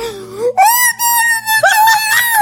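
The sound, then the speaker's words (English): A boo box lets out a loud, ghostly moaning wail, a drawn-out tone that swoops upward in pitch and wavers through three long, breathy phrases with no talking. “The boo box.”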